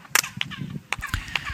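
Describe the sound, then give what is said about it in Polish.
About five sharp hand claps in an uneven rhythm at the Pyramid of the Moon, which is surrounded by other buildings. Each clap is answered by a brief, high chirping echo that sounds like the call of the quetzal bird. There is no talking. “Gdy to zrobimy, to rozlegnie się echo i usłyszymy dźwięk podobny do dźwięku, który wydaje ptak Quetzal.”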